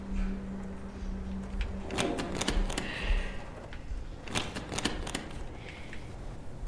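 A locked door that will not open gives off bursts of sharp, rattling mechanical clicks in two quick clusters, fairly loud, over a low steady hum with no voices, as someone tries to get it open.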